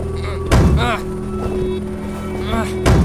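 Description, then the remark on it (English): Two heavy, hollow bangs strike a truck door about two seconds apart over a steady low hum, with strained vocal sounds in between and no clear words, as someone tied up tries to get out of the locked truck. “I don't think banging against the door is going to get us out of this truck.”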